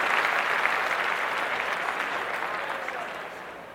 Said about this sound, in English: So let's clap up the nomination. Clap that up. Yeah.